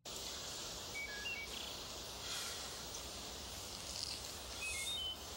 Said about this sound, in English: Okay, I'm glad you pointed that out, that like stock bird noise that has been repeating in this episode. I wonder if that bird is native to California.